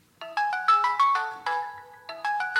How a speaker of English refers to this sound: She's about to do this competition to get into the Olympics, and she gets this phone call.